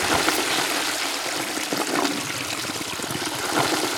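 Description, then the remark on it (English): A toilet flushes with a steady, loud rush of water that runs for several seconds, heard alone with no talking. “So, yeah, I got to flush it, too.”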